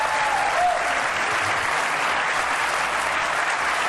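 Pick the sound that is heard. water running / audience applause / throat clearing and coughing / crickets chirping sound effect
audience applause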